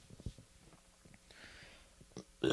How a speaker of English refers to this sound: Ew. Nasty burp. We haven't had a burp in a while, so I'm glad we got a burp in here.